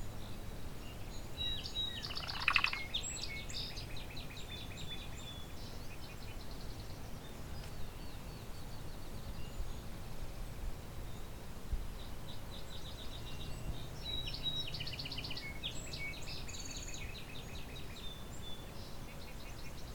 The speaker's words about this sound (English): Lots of song sparrows around. Northern cardinal. Field sparrow.